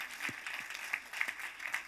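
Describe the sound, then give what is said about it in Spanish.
Steady audience applause at a church service as a preacher is welcomed to preach the rest of the message, a dense wash of many hands clapping at once with a few sharper claps standing out, moderately loud and continuous throughout. “Un aplauso a”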